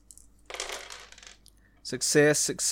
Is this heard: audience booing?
no